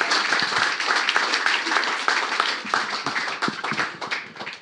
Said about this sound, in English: Thank you very much. Round of applause, ladies and gentlemen. Come on.